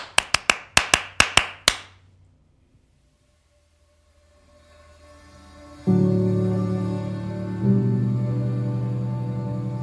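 A quick, even burst of about seven sharp hand claps, followed by a brief silence and then a low, droning tone that swells up and grows loud.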